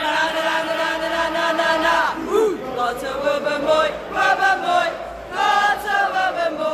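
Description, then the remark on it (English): Fans in the away end at a football match chant together in loud, sustained, rhythmic bursts, with massed voices holding drawn-out notes that swell and fall repeatedly over steady background roar. “It's been a little bit of the away end has been banging”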